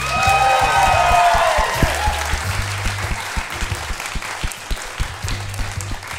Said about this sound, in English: Would you please give a massive round of applause to our musician / Foley artist tonight,